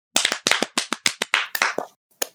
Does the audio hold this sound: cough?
no